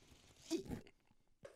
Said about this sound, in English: I'm going to take another sip of coffee. How long have we been going here? 26 minutes and only three sips. I'm doing pretty good.